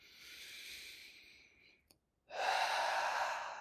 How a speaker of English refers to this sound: Breathing big deep breaths through it. You're not letting it get trapped in your body. You're not letting it get stuck in your body. Big, deep breaths. Big, deep breaths in, big, deep breaths out.